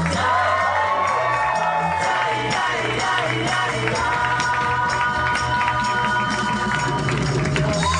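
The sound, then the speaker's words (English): A loud live audience cheers and claps steadily as the host is welcomed to the stage, with whoops and shouts rising over dense, continuous applause that fills the whole stretch without pause. “You're a good crowd.”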